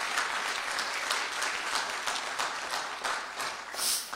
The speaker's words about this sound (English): Somebody give Jesus a hand clap of praise, would you?